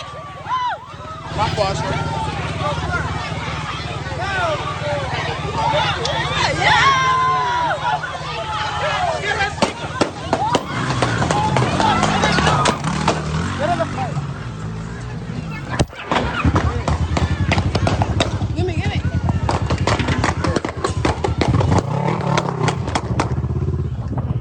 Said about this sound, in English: All those pops are gunshots, like dozens. All that of them. Was gunshots? All the pops, yeah.